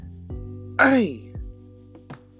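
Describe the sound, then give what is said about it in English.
One short, rough throat clearing, a gravelly voiced burst about half a second long that drops in pitch, with a few soft mouth clicks before and after and no talking. “I don't know what that did, but let me just clear my throat real quick.”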